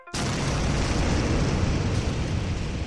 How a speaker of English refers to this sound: Eventually, stars sadly run out of fuel, and then gravity's going to win. It collapses in on itself. As it collapses in, material gets thrown away in what we call a supernova explosion. These are really, really big, powerful events.